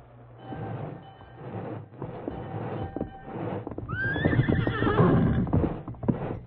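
A horse named Silver lets out a loud, wavering whinny partway through, with uneven hoofbeats clip-clopping over a low, steady rumble.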